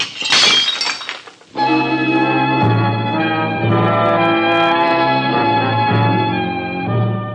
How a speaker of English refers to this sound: I'm going to break another dish.